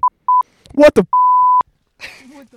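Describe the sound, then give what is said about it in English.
A sensor beep sound effect: a few short, clear electronic beeps, then a sustained steady tone. A brief vocal sound breaks in between, and people start talking faintly once the tone ends. “We also have we have the Vine Boom, and we have a little sensor beep.”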